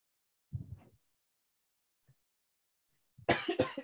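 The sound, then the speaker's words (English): A muffled, held-back cough is followed after a pause by a louder, harsher cough bursting out, with no talking around it. “I felt that cough coming and I was trying to hold it and then it went out.”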